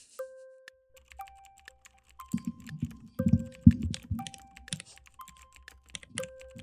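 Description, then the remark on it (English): Rapid, clattery typing on a mechanical keyboard, fairly loud, with dense bursts of keystrokes and a few short pauses; no talking, just steady clicking and clacking. “ASMR mechanical keyboard.”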